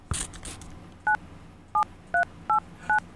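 Five telephone keypad tones beep in an uneven sequence, each a short, steady two-pitch electronic chirp. A brief clatter comes just before them, and nobody speaks.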